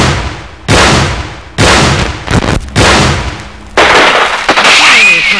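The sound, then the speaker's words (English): A muzzle-loaded bronze cannon fires in a series of loud, booming blasts, each leaving a rumbling, echoing tail before the next shot, with a faint high whistle near the end. “The stereo recording you just heard of a muzzle-loaded bronze cannon”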